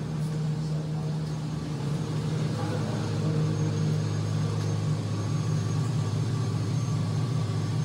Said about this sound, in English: So you can hear the hum coming off. Has anybody ever been in a data center before? It's hot in there.